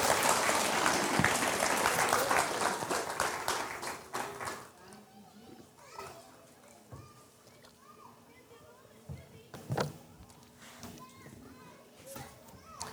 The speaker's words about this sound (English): Can I get a hand clap of praise tonight?